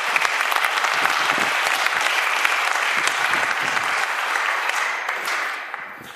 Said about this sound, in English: Give everybody a round of applause, folks.